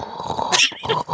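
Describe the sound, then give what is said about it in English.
A voice mimics an espresso machine steaming milk, producing a raspy gurgling hiss with a brief, brighter surge in the middle and a short break near the end. “Steaming an espresso.”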